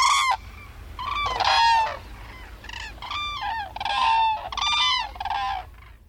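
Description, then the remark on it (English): Whooping cranes, watched from a home in Leesburg, Florida, call in a loud series of harsh bugling honks, several overlapping bursts following one another over a few seconds, with no one speaking. “watches the whoopers from his home in Leesburg, Florida.”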